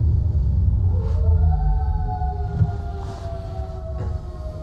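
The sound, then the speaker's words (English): A second fire truck, from a firehouse a block away, rolls past with its siren wailing in rising tones above a heavy, continuous engine rumble, loud throughout, with no one talking. “That's the joy of living a block away from a firehouse.”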